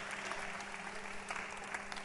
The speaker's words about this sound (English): Clap your hands for her.